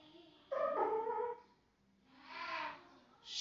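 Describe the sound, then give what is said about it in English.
A male cat yowls loudly in a long, wavering, harmonic cry, followed by a second drawn-out, breathier wail and the start of a third, with no talking over it. “Are you yelling? Gosh, I'm sorry if you can hear him.”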